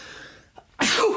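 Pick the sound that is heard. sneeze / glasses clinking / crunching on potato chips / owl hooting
sneeze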